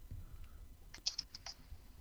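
Quick typing on a computer keyboard, a short burst of light, crisp key clicks clustered within about half a second, fairly quiet, over a low background hum with no talking.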